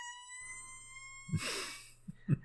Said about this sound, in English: Let's up the turn with a nice squeaky fart noise.